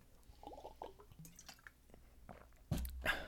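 Someone sips water: quiet wet mouth clicks and small liquid sounds, then a louder gulping swallow near the end. No talking.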